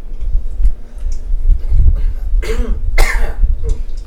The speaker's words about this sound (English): He coughs.